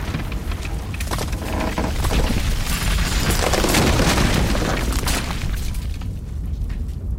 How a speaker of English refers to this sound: Whoa! Crap! Get to the sides! The roof is caving! I got her! Hurry!